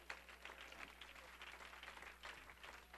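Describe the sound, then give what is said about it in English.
An audience claps their hands unto the Lord in praise, a dense, steady wash of many overlapping claps without pause, moderately loud and sustained, with no voices standing out. “Now one more time, clap your hands unto the Lord.”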